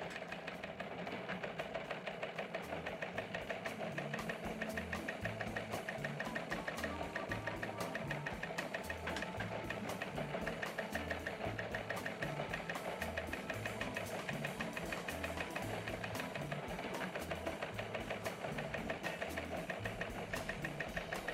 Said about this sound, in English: Oh, look, the teletype's still going.